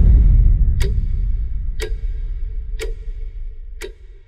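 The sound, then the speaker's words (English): A clock ticks four times, sharp and evenly spaced about a second apart, over a deep, rumbling low drone that slowly fades, with no voices. “You know what made me realize is that a clock ticking has been a sleeping trend in trailers for a while that I haven't noticed, but it's definitely a trend.”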